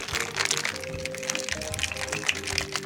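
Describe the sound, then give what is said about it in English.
Ice rattles hard and fast inside a cocktail shaker holding lemon juice and sugar, a dense, steady clatter of cubes knocking against metal that continues for a few seconds, fairly loud, with no talking. “Shake it up real good. So we do have this in the shaker as opposed to stirring in a Yari or something like that.”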